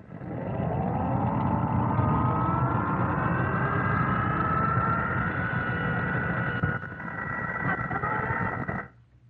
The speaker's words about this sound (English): I'm telling you, there are Jap planes, scores of them.